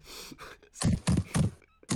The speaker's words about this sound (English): Why? Why is he banging on our door?